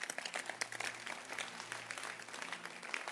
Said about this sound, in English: I can tell you, if you stop clapping